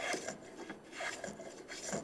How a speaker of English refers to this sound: One thing you'll notice that the plane is chattering a little bit. It makes that little grunting sound. That means you're probably trying to cut off too much, right?